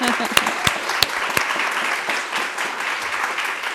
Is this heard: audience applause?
yes